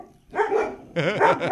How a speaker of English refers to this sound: See, the dogs don't agree. Yes, now we're back. Oh, the dogs, jeez. Yeah, on, they, guys, they bark at nothing. Yeah, there's probably a fly on the wall or but something.